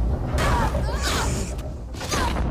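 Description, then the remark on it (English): Flooring on a bridge creaks and cracks loudly as a person walks across it, then gives way in a rush of splintering and thudding debris as they fall, followed by a second burst of breaking a moment later. “It broke and I fell.”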